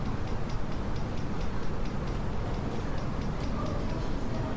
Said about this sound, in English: I don't know what the ticking... It's the fan, I think.